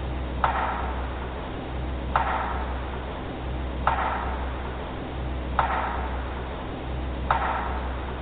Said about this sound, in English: So the first sound is just it's almost a power strike, this loud wood knock.